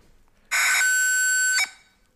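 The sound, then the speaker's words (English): A harsh electronic screech like an old dial-up modem: a noisy hiss layered with steady high, buzzy tones, held loud for about a second before cutting off abruptly. No talking. “Sounds like an old modem.”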